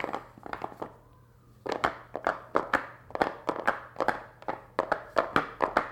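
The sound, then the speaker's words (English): Corks rattle as they are shaken in a container, a busy run of dry clattering bursts in an uneven, rhythmic pattern, with a brief lull early on before the shaking picks up again. “The reason I like the corks is because the sound they make when they're shaken in a container is sort of a substantial clutter, like that of a wagon or a bus.”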